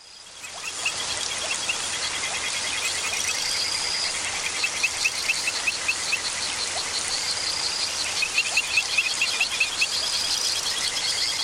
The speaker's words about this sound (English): And we leave you this week in the dangerous world of poison dart frogs. These sometimes fatal amphibians inhabit South and Central America.